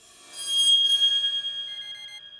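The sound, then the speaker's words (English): A faint bedroom alarm rings with a steady, high metallic tone, its bright bell-like overtones shimmering for a couple of seconds before thinning out. No voices. “The faint sound of the bedroom alarm startled him awake.”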